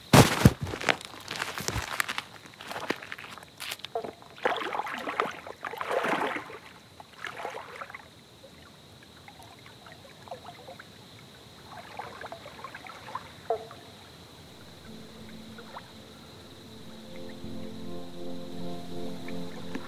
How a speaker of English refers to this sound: There's little bats flying overhead, and there's a pretty full moon out, so I'm going to try and slip into the water now. All right, here we go.